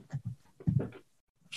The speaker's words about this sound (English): What was I saying? Damn, another sneeze fucked me up.